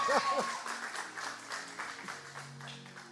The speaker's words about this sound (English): Come on, give Jesus a round of applause.